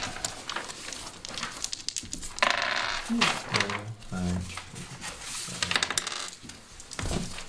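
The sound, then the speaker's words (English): Dice rolled for checks in a game clatter and tumble across a hard surface in a series of sharp, rattling clicks, with voices murmuring underneath throughout. “As for the rest of you, since we're passing on to a new section, you can roll your checks.”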